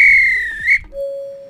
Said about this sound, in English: This is when the ref blow the whistle because it's finished.